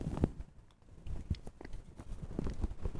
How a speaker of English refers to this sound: As a rookie, let me take a sip here.